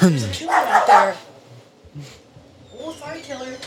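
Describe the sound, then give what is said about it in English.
A dog barks in a quick burst of two or three loud barks, then lets out a higher, drawn-out whining yelp after a short pause. “Did you see the killer dog?”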